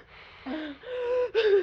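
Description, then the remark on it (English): A person draws in a deep, ragged gasping breath during a breathing exercise, catching in about three voiced pulls that rise in strength, with no talking. “Focus on your breathing. In.”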